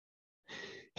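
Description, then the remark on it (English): A single sneeze: a soft, breathy intake of air builds for a moment, then breaks into a sudden, loud, explosive burst right at the end. No talking. “Oh, bless me. Bless you.”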